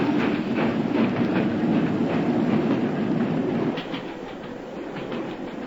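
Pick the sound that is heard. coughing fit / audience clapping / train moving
train moving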